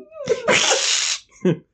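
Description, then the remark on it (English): A girl imitates a cat's hiss at a laughing man: a short voiced catch, then a sharp, breathy hiss lasting under a second, ending with a quick vocal grunt. “Wide-eyed girl hisses at him.”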